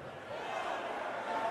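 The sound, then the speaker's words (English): A large crowd cheers and roars at a darts match as a player throws a nine-dart leg, a dense wall of voices that swells slightly in the first moments and then holds steady and loud throughout. “So here's a crowd going nuts when a dart player throws, I don't know, a 9 dart leg, whatever that is.”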